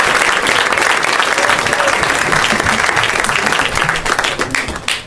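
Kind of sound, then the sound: crowd, audience clapping loudly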